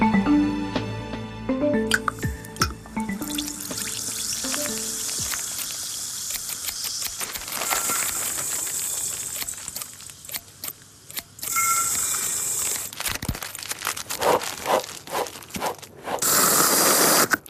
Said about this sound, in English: What you just heard was a ring pull on a can of fizzy drink, scissors snipping, beans being poured into a bowl, scrunched packaging, hair brushing, and the spray of shaving cream.